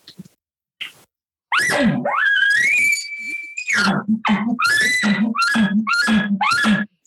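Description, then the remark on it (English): A voice imitates a bull elk bugle: a rising, sustained high-pitched squeal, then a rapid run of about seven throaty, grunting chuckles, loud and alone without other talk. “I said, and then let me guess, after about 20, 30 minutes, the bull started responding like this.”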